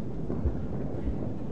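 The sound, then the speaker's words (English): Feet stomping on the floor in response to a call to stomp if you're a happy Christian, a steady low rumble of many thuds blending together, with a couple of heavier thumps standing out. No one speaks. “But if you're a happy Christian and you know it, stomp your feet.”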